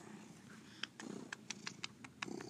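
domestic cat purring

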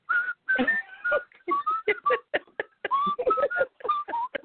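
person whistling a tune

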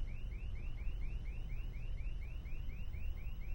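alarm going off

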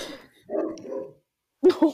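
dog barking angrily

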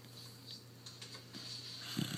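dog snoring

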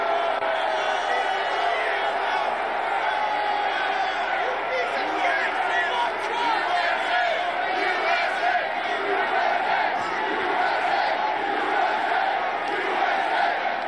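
crowd shouting

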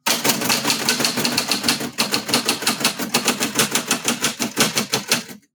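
typewriter typing

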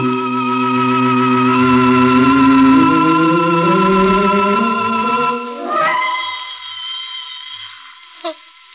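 telephone ringing

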